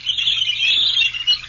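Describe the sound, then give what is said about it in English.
Birds at the Indiana Dunes: a dense, continuous chorus of high-pitched chirping fills the short stretch, steady and fairly loud, with no voices over it. “Those birds.”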